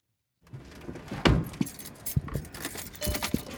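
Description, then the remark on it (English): A car seatbelt being pulled and buckled, with several metallic clicks and jingly rattles over about three seconds. Nobody speaks. “So we got off my porch and hopped in the car. Buckle up.”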